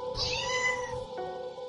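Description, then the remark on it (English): A cat meows once, a drawn-out, wavering cry, fairly loud, with a faint hum underneath and no one talking. “Kitty!”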